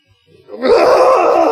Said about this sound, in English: Golly, excuse me. That one was, I struggled with that one. I hope you all felt. Did you struggle with the burp or with the sound you were going to make? All of it was suffering.